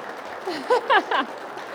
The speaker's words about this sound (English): I know, they're here, so I actually think we should, like, applaud this magical moment. Yes.